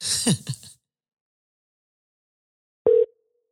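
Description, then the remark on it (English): An outgoing phone call's ringing tone: one short, steady mid-pitched beep after a stretch of silence, preceded by a brief burst of breathy vocal noise. “It's ringing.”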